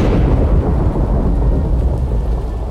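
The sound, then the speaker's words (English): Loud, deep thunder rumbles continuously over a steady roar of heavy rain pouring down on an outdoor stage and crowd, enveloping, with no voices. “The sky cracked open again with a massive thunderclap, and then the rain poured down.”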